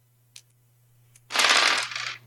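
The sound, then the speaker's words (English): Three dice rolled in a tabletop role-playing game rattle and tumble across a hard surface in a burst of clattering clicks, preceded by a couple of small taps, fairly loud, with a steady low hum underneath; they land on 5, 6 and 2. “So that's three dice.”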